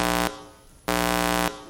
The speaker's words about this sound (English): it does sound like a nuclear alarm going off.